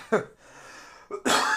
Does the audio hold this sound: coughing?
yes